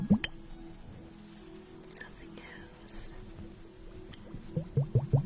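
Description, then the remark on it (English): Soft liquid bubbling and dripping, a few scattered pops early on, then a quick run of wet bubbles near the end, with faint whispering underneath. “Just listen to the bubbles and the sound of my voice as you just relax.”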